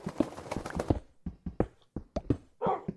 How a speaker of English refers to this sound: Woof to you too, Wolfie. Woof to you too.